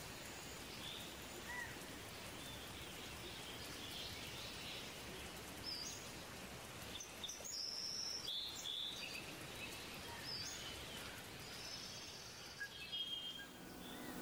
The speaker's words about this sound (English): Do you hear it, Barry? Hear what? The animals, the insects, the birds.